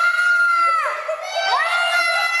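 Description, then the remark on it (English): Frightened children at a 6-year-old's birthday party, scared by a Bigfoot character carrying party balloons, scream together in a loud, continuous high-pitched chorus, with several shrill voices swooping down in pitch and rising again as the screaming carries on without a break. “The beast scares the daylights out of the kids who think he's for real.”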